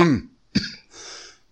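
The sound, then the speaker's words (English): A short throat-clearing rasp, followed by a sharp cough and a breathy, wheezy exhale, all within a second and a half with no talking. “damn, I'm by myself, but I can't even get the coughs out.”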